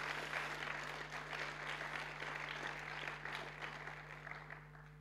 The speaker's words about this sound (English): Come on, give a clap offering to our Lord Jesus Christ.